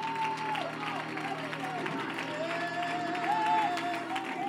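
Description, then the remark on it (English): An audience claps hands in a dense, steady wash, moderately loud throughout, while sustained musical tones and murmuring voices carry on underneath. “If you'll try to clap your hands for a little bit, you keep clapping.”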